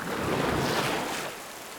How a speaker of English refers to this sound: But when the monsoon rains came that summer, the river rose higher and higher.